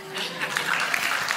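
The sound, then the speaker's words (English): An audience breaks into steady applause, a dense wash of many hands clapping at once, fairly loud and sustained throughout, with some faint voices mixed in. “I'm looking for a chair, not applause.”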